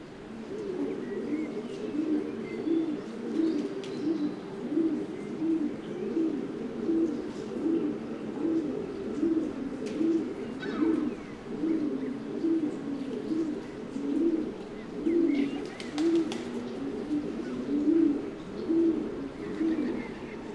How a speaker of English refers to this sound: The feral pigeon's song is quiet, low and mournful, repeated poo, poo, poo. Feral pigeons also make prolonged cooing sounds at the nest when they're trying to attract a mate.